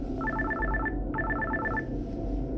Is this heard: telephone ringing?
yes